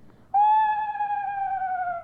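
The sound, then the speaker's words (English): A person imitates a screech owl's call: one sustained, fairly high whistled tone that starts abruptly and glides slowly downward in pitch for nearly two seconds, fading slightly, with no talking. “The difference is that the screech owl just has a descending cadence like this.”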